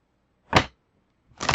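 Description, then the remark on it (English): Two quick, crisp bursts of a deck of cards being shuffled for a card reading before one card is drawn: a short riffling rush, a pause, then a second riffle cut off at the end. No one speaks. “Okay, shuffle, keep it shuffling.”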